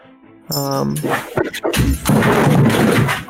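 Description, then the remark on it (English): A pet, Sookie, knocks a light over by pulling on a cord: a brief vocal exclamation, then a loud clattering crash with scattered rattling and knocks that lasts about a second and a half before stopping. “Sookie knocked the light over by pulling on a cord, sorry.”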